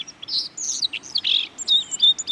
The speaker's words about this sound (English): The white-throated sparrow travels well into northern Canada during the breeding season. But in autumn, you'll find them kicking up leaf litter from the east all the way down into Texas and even into the southwest.